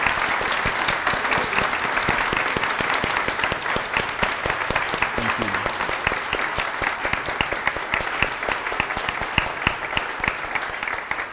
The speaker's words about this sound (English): All right, that is all of our, make sure we got everyone, that is all of our Sunday school teachers. So let's give them a wonderful applause for their service.